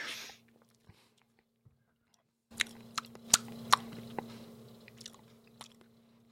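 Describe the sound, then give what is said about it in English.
Someone sips a very old, very thick alcoholic drink with the consistency of motor oil, tasting like a heavy stout with a few bubbles: after a near-silent start, a series of wet mouth clicks, smacks and swallowing sounds rises over a steady low hum, with no one talking. “No, because I doubt I'll make more than a sip because it's so old.”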